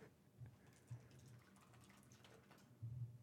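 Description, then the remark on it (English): Beer pouring from a 12-ounce can of American Pilsner into a glass, a faint, steady liquid splash and gurgle lasting a few seconds, with a couple of slightly louder glugs near the start and end. “All right, I'm about to pour it.”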